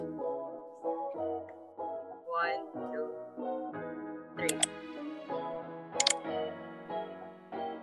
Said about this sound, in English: 12B, is that an enter button when you submit? Ah, 12A, mouse clicking.